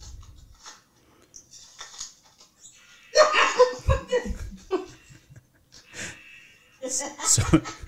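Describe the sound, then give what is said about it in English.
A squeaky toy farting ring, just unwrapped from a present, gives off a few short, low, sputtering farting noises in bursts, mixed with excited laughing and giggling. “So it's making a farting noise right now.”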